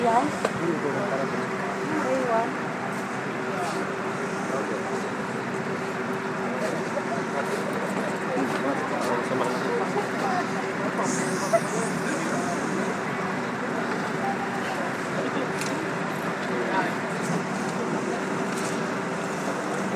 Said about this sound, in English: Okay, the bus has arrived. There's a mad scramble for the front door of the bus, which I'm not going to join.